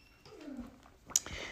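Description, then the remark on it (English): A kitten playing around in the morning lets out a soft, low, cooing trill lasting about half a second, heard quietly, followed by a brief sharp tap and faint rustling. “And here's another animal friend. And so this morning, as she was, like, you know, playing around and being her kitten self, I said, okay, let me just surrender to it.”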